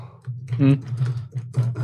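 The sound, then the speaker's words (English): Rapid touch typing on a computer keyboard without looking at the keys, a quick run of clicky keystrokes over a low steady hum, with a brief voice sound partway through. “Listen to that fast typing!”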